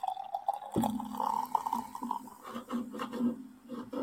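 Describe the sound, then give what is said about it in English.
Mocha-coloured stout glugs steadily from a massive can into a glass, forming a thick, foamy head; a continuous pour with a rising gurgling tone and faint fizzing underneath, running without pause for several seconds. “That head on mine is pouring insane.”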